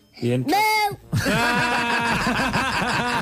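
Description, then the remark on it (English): A four-and-a-half-year-old child's high voice mimics a cow's moo while telling an interrupting-cow knock-knock joke: one long drawn-out call, a brief pause, then a loud, wobbling run of quick repeated moos. “Knock, knock. Who's there? Interrupting cow.”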